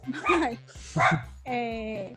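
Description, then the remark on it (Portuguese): A small dog named Luna barks and yips in three short bursts, the last a longer whining, tonal howl, loud with nothing else competing. “Tá falando cachorrinho, a Luna.”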